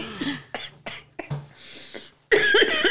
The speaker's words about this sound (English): I'm the grandma that just coughs when she laughs.